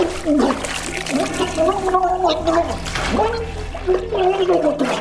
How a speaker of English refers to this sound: Blossom grabbed a fistful of hair and dunked his head into the toilet